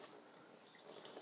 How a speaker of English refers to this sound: I am coming at you live from your favourite place and mine, the kitchen sink. That's right, I'm back at ground zero, I'm washing dishes.